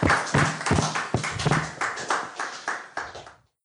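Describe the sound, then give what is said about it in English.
A short burst of audience applause at a Whitechapel Society meeting after a talk on medieval Jewry in the East End, dense overlapping hand claps with a few sharper individual claps standing out, steady and fairly loud before fading out quickly at the end. “So a round of applause, everybody.”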